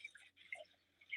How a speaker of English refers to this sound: Are you doing the dishes? Oh, it's fine. I'll turn that. Yeah, it's funny. I'm multitasking.